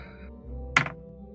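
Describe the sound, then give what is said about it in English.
Dice are rolled onto a tabletop for a perception check: one sharp clattering thunk followed by a brief rattle as they settle, over a low, steady background hum with no talking. “Sorry, I didn't have my dice out. Dice behave.”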